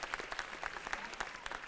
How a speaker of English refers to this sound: 73 years since you've been. Yeah, give him a round of applause, absolutely.